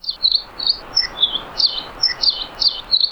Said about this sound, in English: we have a song of the Nihoa finch, which are endemic to Nihoa Island in the northwestern Hawaiian Islands